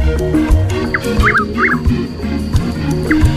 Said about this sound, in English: whose call has inspired colorful nicknames like Hollerin' Boys, Twixt Hell and the White Oak, and the Dutch Whippoorwill. It's known scientifically as Caprimulgus carolinensis. It's today's Talkin' Birds featured feathered friend, Chuck Wills' widow.